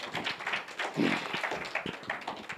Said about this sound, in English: All right, come on, clap your hands for Jesus.